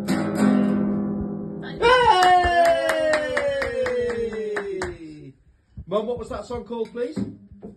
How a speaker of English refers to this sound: So everybody put your hands together, round of applause for